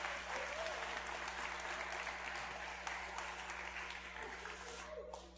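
A crowd applauds steadily, the dense clapping holding at a strong, even level before thinning out near the end, with a faint low hum underneath.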